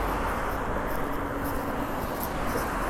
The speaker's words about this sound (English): So it's a nice day here, man. I'm walking. I'm on the bridge right now. You can probably hear the cars.